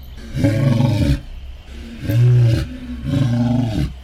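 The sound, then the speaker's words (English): A lion roars three times in a row, challenging two night wolves to fight him alone, each roar a deep, loud, drawn-out growl with short pauses between, unaccompanied by any talking. “What's up with the lion? What's he doing? He's challenging the night wolves to fight him alone.”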